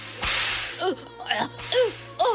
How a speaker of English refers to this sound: She tore the whip from the dirty companion's hand and started to beat him wildly.